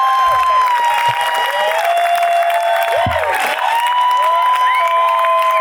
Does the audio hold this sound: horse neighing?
no